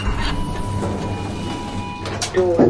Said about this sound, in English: Door opening. It's clear. Come on.